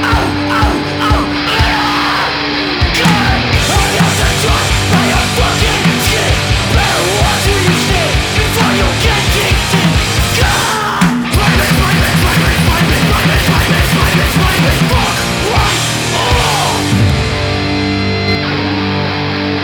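Loud, distorted rock music from a band demo recording, with pounding drums, thick buzzing guitars and shouted vocals, dense and raw throughout with a brief break near the middle.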